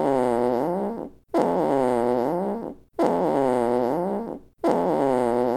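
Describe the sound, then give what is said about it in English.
A fart sound effect plays four times in a row, each a loud, buzzy, wavering blast lasting over a second, separated by brief silences. “Oh, it's a good thing we have the fart noise sound effect here at the Sonic Truth Podcast.”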